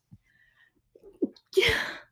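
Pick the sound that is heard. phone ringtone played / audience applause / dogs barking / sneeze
sneeze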